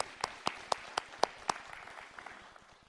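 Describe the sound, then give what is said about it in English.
An audience claps and applauds in the middle of a church service to congratulate a newly engaged couple, with a few sharp, evenly spaced claps standing out over the crowd's patter before the applause gradually fades. No one speaks. “Yeah, we can clap right here in the middle of the service.”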